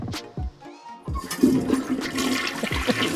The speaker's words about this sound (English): Well, there was a moment when it sounded like you flushed the computer down a toilet.